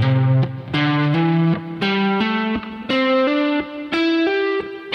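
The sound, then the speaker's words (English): A distorted electric guitar plays a quick series of sustained hammer-on notes, each new pitch sounding without a fresh pick attack, climbing in a rough steady rhythm with no talking. “So when you're hammering on, you want to make sure that you hammer your finger down firmly and you hammer it down in the right spot so that you can clearly sound the note.”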